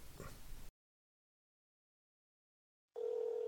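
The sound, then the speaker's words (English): A telephone rings over a speakerphone after the Dragon Con 2006 number is dialed at 10:12 on a Thursday night. There is a short rough burst and a silent gap of about two seconds, then a steady, buzzy mid-pitched ring tone starts again, fairly loud, with no voices. “we're going to see what happens when we dial the Dragon Con 2006 number at 10 o'clock at night.”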